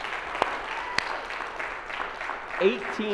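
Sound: round of applause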